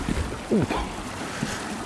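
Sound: river water flowing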